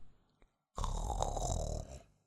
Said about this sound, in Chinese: 泰迪打了个哈欠，问道： 现在，是不是快到了呢？